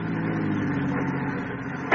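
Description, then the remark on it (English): A parked car's engine is started late at night on an empty road, then runs in a steady idle with a low droning hum, swelling briefly louder right at the end. No one speaks. “I switched on my ignition, started my car.”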